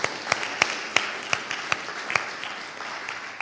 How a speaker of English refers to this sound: Now, it's not often done in church, but I think that reading deserves a round of applause because that was brilliant. Well done, girls.